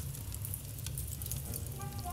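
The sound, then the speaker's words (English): A fire in a fireplace crackles steadily over a low, even roar, with scattered sharp pops and snaps throughout; faint tonal notes creep in near the end. “Let me get this fireplace going.”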